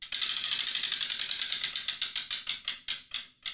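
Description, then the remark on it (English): A huge prize wheel with 18 numbers, kept in an office, spins with a rapid stream of sharp, bright clicks that gradually slow and spread apart as it winds down to a stop. “So we keep this huge wheel in the office and it has 18 numbers on it”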